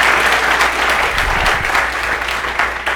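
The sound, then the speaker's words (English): An audience claps together for a woman who has just sung, in a steady, dense wash of applause that holds at a fairly loud level for several seconds, with no voices standing out. “Why don't you clap for her a little bit?”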